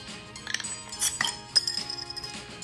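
Beer glasses clink together in a toast, a few bright chiming knocks followed by a brief high ringing tone that lingers, fairly quiet, with no voices.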